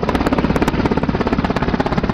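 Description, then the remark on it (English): Loud helicopter rotor noise from a Mil Mi-8 and a Bell UH-1H Huey: a fast, steady thudding chop of blades over a dense engine roar, continuous throughout with no voices. “This is Helicopter Mill MI-8 and Bell UH-1H Huey original sounds.”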